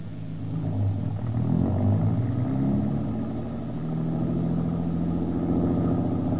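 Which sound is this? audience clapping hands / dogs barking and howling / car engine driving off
car engine driving off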